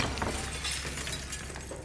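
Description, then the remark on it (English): A chandelier crashes down as Hitler is pulled out of harm's way, a sustained burst of shattering glass, a dense, bright tinkling crash that stays loud and steady for about two seconds with no voices. “At one point, Hitler is pulled out of harm's way, in the nick of time, as a chandelier comes crashing down.”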